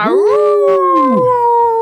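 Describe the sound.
A person imitates a wolf howl: a single loud voice rises sharply, holds a long steady wavering tone, then slides down near the end, with nothing else audible.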